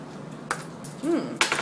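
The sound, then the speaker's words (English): Dice are rolled for notice rolls in a game, making a few sharp, bright clacks spaced unevenly over a second and a half, with a short murmured voice between the hits. “Okay, so ready to I roll will some need... Dice.”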